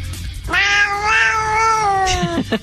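A cat gives one long, drawn-out meow lasting about two seconds, loud, with a slightly wavering pitch that rises and falls before trailing off. No one speaks.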